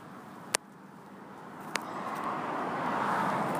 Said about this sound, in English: After this car. Yeah, after this. Cars just keep on coming.